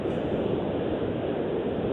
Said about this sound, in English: I'm just driving down the road. Yeah, we can hear the engine, so go ahead.